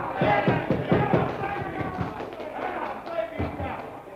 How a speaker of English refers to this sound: That uproar came from right the other end of the bar, from the crowd watching television. I'd forgotten all about the seventh game in the World Baseball Series, Yankees versus the Braves.